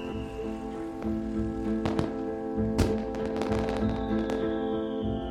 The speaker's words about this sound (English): It's bonfire night, and fireworks are starting to go off across the city.